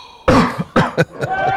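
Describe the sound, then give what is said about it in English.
A loud run of sneezes during a cigar review, four or five sharp, breathy bursts in quick succession, each explosive onset trailing off briefly before the next. “Gesundheit.”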